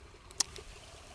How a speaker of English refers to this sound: Oh, that was cool. A frog just jumped in the water.